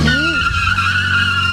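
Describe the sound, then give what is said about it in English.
A loud, sustained screech of car tires skidding on pavement, with an engine roaring beneath it as a car speeds off, filling the short moment. “She jumped in her car and sped off, and the man says, hey, I'm not going to be on the hook for this, and followed her.”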